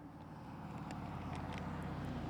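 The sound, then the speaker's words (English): A big Porsche sports car drives by, its engine a loud, deep, steady growl with a throaty rumble that holds throughout. No one speaks. “It's a big Porsche driving by.”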